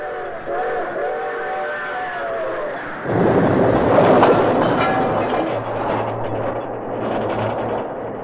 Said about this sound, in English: The train! The train's coming. That guy in the car, he'll be killed.